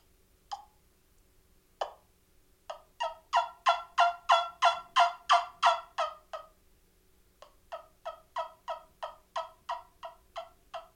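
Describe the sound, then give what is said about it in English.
Two sharp single clucks, then two long rhythmic runs of raspy, evenly spaced turkey yelps, about a dozen each, made on a suction-style turkey call, a trumpet-like call played by kissing its end, with no talking. “It'll do yelps and clucks pretty good, but anything other than that, like, I've seen a guy do a purr, and it was pretty impressive how he did it, but it still wasn't anything like a pot call or a mouth call.”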